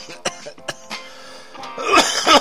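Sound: coughing and throat clearing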